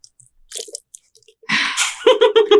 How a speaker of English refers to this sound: The sound. The sound of a water bottle.